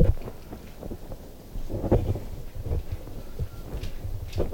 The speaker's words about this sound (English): All right, now we're in Brampton to hear the startup of my second coffee maker, my coffee maker away from coffee.